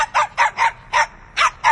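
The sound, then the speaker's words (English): A small dog yaps sharply six times in quick succession, high-pitched, with brief gaps between the barks and no talking. “Ew, a barking rat. That's Boom Boom, Stan's early warning system.”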